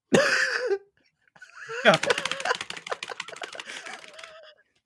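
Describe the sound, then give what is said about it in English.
A short vocal sound, then a pause, then a rapid flurry of computer keyboard keys clattering for a couple of seconds, dense and uneven before trailing off; the key presses opened about 600 Excel sheets. “I left my keyboard on for that, and it opened up like 600 Excel sheets.”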